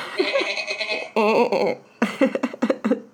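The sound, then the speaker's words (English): A person bleats like a goat in a few wavering, nasal bursts, ending in a quick run of choppy, laugh-like pulses; fairly loud, with no other sounds around it. “Yeah, that was, I had to, like, be like, all right, you should probably go take a voice lesson if your voice is sounding like a GOAT.”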